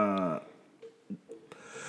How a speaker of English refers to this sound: Excuse me. Somebody's been battling a cold. Yeah, I have. And we don't have a cough button, so he's coughing all into the mic.